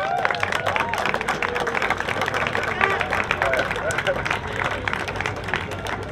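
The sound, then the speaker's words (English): A crowd applauds steadily for several seconds, dense rapid clapping mixed with shouts and cheering voices, holding at a fairly loud, even level throughout; a round of applause for the Roscommon CBS team after a game. “So just a round of applause for Roscommon there.”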